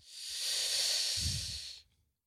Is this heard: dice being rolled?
no